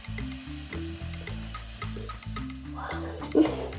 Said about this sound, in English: All right, so we're going to add 1/4 cup of vinegar to the third glass. All right, is the vinegar in there? Then we can add that teaspoon of baking soda to the vinegar. Oh, gosh. It's bubbling faster.